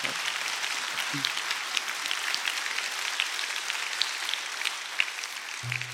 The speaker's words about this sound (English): But would you first just give our panel a round of applause and thank them?